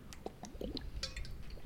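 gulping water

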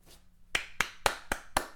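hand clapping

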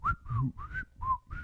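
person whistling a tune

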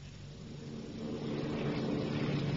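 propeller airplane in flight

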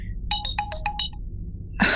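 phone ringtone

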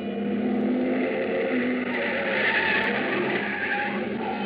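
car speeding past

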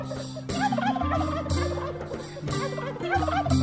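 turkey gobbling

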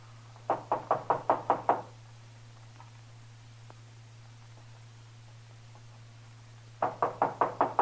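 knocking on a door

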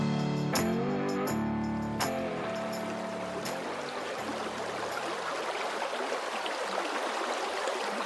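flowing stream water

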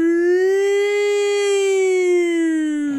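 alarm siren sound effect

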